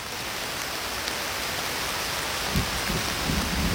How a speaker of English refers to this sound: Oh, there's thunder! There's thunder and lightning!